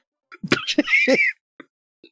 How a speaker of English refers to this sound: Bless you.